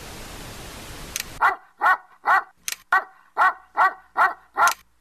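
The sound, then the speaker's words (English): A dog with a blue collar, shown on a television through a home theater unit, barks eight times in a steady, rhythmic series after a brief burst of hiss, the barks loud and slightly tinny, as if coming through a speaker. “How did the dog get on the television?”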